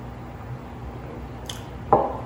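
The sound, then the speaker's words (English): Someone quietly takes a quick sip of water, with a soft clink of a glass and a brief wet gulp over low background noise. No one speaks. “And as you guys are turning there, I'm actually going to have a drink of water real quick.”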